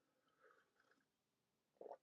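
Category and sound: food or drink, sipping coffee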